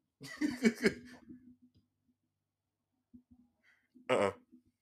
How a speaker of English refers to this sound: Put a little fart on there. Get a little wet fart on that one. Yeah, that's a little wet one. Get it one more time. Yeah, that's a little wet one right there for you.